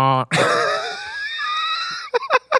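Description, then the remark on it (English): A shrill, wavering screech rings out for nearly two seconds, loud, right after a brief low buzzing tone, then gives way to a few short vocal bursts. “I'll go sample the screeching noise from 51 yes. seconds, and that's what I'll put in there.”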